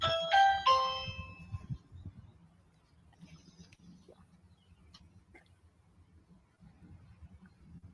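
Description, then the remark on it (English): A loud electronic chime from a Ring camera doorbell at a house rings out in a quick two-note ding-dong pattern at the start, then fades into a low, steady background rumble with a few faint clicks. “Well, so ring, if you're not home, it goes off on your phone.”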